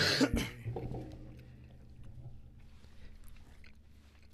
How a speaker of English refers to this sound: Stop chewing in front of the goddamn mic. It's delicious. It's really good.